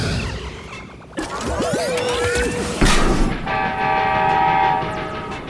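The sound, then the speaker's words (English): A train rumbles along loudly as its horn blasts a long sustained tone, with a sudden crashing impact partway through and steady clattering rail noise underneath. “She transformed back into the train?”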